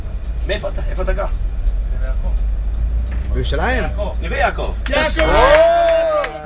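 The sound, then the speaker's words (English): A steady low rumble inside a spacious bus being driven fills the background while people talk over it, with a few louder voices and brief knocks near the end. “We're being driven. We have a nice spacious bus, not a lot of elbow room.”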